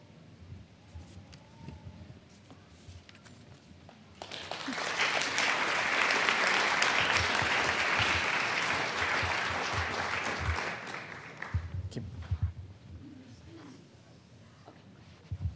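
After a few seconds of quiet murmuring, an audience breaks into loud, sustained applause that holds steady for about seven seconds, then fades back to scattered claps and low background noise.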